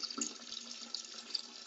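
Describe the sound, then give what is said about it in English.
A steady stream of urine splashes continuously into water, a soft hissing, trickling pour that holds an even level throughout with no voices. “You can use Anchor.fm to record your podcast on your phone while you're pissing.”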